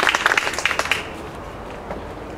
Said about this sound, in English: Thank you so much to everybody who shared. Big round of applause for everybody.